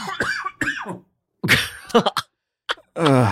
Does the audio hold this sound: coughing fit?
yes